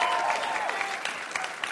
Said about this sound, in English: You guys are cool with that? It's SF people cheering.